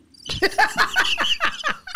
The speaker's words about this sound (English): Girl, this is birds chirping. You know what? Please ignore that sound.